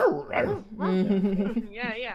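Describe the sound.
A person imitates Sparky the Wonder Dog with a few loud vocal barks and yips, pitch rising and falling. Nobody speaks in ordinary words.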